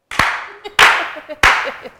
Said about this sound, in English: let's begin by welcoming him in This, That, and the Third fashion with a slow clap, please